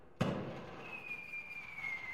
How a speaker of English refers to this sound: this is the Chris to Chris Fireworks Spectacular